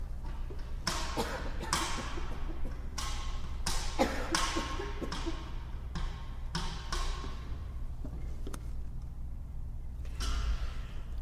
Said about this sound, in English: I'm going to cough, so excuse me one moment.